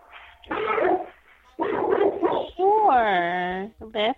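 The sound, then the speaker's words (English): A dog lets out several sharp, loud barks in quick bursts, then a long, rising-and-falling whimpering whine, ending with a short yelp. “do something with that dog, man.”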